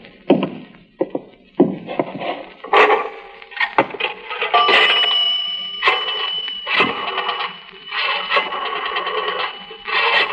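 Someone uses a coin-operated wall telephone that costs a nickel: sharp clicks and clinks of handling and dropping coins, then a steady ringing tone that continues with more clatter.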